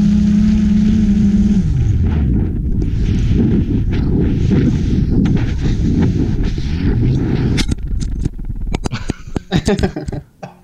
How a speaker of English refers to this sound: Yeah, so, I mean, engines are running, and then all of a sudden, they just stop. And this was, I mean, for what I could tell, this was a few hundred feet in the air above a baseball field.